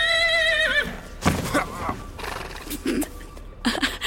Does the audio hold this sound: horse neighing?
yes